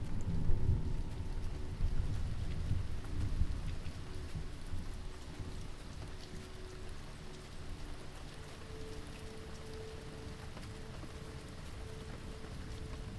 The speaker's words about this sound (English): Today, a storm is rolling in from the sea. Thunder cracks across the sky. You only have a few minutes until torrential rain.